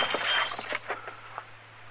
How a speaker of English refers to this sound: You knocked that glass out of my hand.